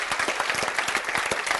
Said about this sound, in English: Write this down. I'll wait while you clap your hands. It's okay.